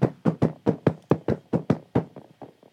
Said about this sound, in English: boom, boom, boom. That gorilla is pounding his chest. Boy, oh boy, he's louder than the rest.